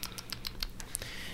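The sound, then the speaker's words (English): A swarm of tiny, rapid clicks patters along in quick irregular succession underground in full darkness, crisp and fairly quiet, like countless small things busily ticking away, with no voices present. “like hundreds of tiny beetles or little drones or something clicking away hard at work.”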